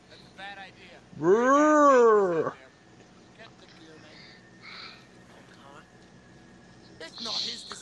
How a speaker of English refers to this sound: Clint Howard is the dragon. Clint Howard does the dragon growls.